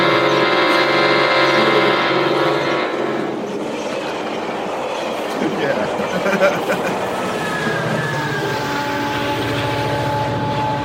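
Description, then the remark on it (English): A loud train horn blares a sustained chord for a few seconds, then gives way to rumbling rail noise before steady tonal blaring returns near the end. “That's the biggest damn train horn I've ever heard.”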